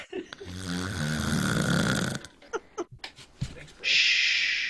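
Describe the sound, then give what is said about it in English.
A person snores: a long, loud, rattling snore is followed by a pause in breathing, a stretch of near silence broken by brief snorts and clicks, then a sudden hissing gasp of breath. “The pauses made me stop breathing.”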